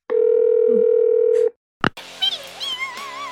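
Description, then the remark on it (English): A steady, buzzy telephone dial tone hums for about a second and a half, then cuts off; a sharp blip follows, then a wavering, warbling run of electronic speed-dial tones. “Speed dial doc.”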